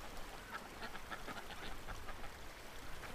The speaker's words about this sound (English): You can hear the river. That's the river down there.